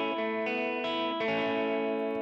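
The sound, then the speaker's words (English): A bright, chiming 12-string guitar riff built around an open A major chord, with the third finger released for the open B string. A few quick chord changes ring into each other under a shimmering, chorus-like effect. No one speaks. “It's just based around an open A major chord. Third finger's released for that open B string, and it just gives you a bit of chime there.”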